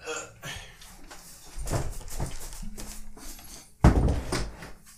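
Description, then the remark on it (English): A room door is knocked and shoved as a dresser is pushed against it to barricade it, with scraping and a loud thud near the end, while people talk in the background. “Did you like barricade the door with an object?”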